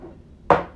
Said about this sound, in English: That cup. Can you bang it on the table?